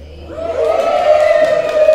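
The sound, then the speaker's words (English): A short, thin cheer from just a few voices, a sustained whooping cry that swells slightly and holds steady for about two seconds, sounding small and underwhelming rather than like a large crowd. “That's the coronavirus cheer, so let's...”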